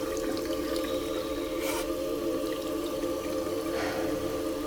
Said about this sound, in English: Stumble into the bathroom. Splash my face.